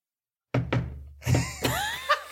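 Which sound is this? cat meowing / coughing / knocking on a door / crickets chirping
knocking on a door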